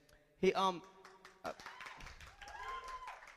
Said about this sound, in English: So what are we clapping for? I'm just kidding.